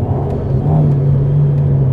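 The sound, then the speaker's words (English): A mid-engine four-cylinder car idles with a steady, low burbling rumble through its short exhaust pipe, fairly loud, holding an even throb for the whole two seconds with no voices over it. “Vim, a very sweet four-cylinder burble.”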